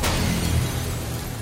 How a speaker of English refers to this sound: The palace remains intact. A fully crystalline room shatters.